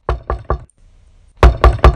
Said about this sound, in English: But one morning, before his father left for the lab, there was an ominous pounding at the door.